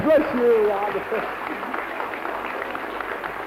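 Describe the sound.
An audience at a church gathering claps steadily for a man called forward, in a dense, moderate wash of applause that carries through the whole moment, with a voice briefly speaking over the start.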